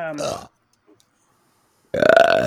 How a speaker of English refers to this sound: I can burp on command, so whenever you want to insert one, I can do it.